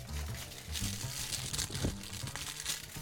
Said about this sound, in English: Here, give me a piece of paper to rattle into the microphone. There you go.